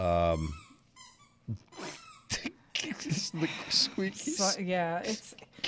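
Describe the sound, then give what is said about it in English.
A squeaky toy gets squeezed by a dog, giving a few shrill, tonal squeaks in quick succession at the start, then people start talking over faint rustling. “He's not barking. He's just squeaking his toy.”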